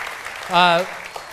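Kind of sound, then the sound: crowd, audience applauding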